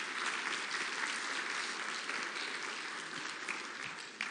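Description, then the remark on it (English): Sustained audience applause, a dense, steady wash of many hands clapping at an even loudness for several seconds, with no voices standing out above it. “Yeah, you can definitely applaud that.”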